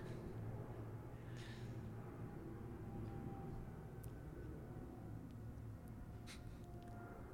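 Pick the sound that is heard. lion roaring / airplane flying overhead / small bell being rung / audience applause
airplane flying overhead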